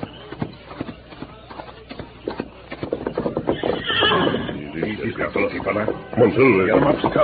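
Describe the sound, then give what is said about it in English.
In a Lone Ranger drama, rhythmic hoofbeats clip-clop steadily, then a horse lets out a loud, shrill whinny that rises and wavers over the galloping. “Let's get the horses and follow them.”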